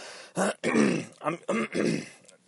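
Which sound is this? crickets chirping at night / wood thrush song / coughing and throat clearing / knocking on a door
coughing and throat clearing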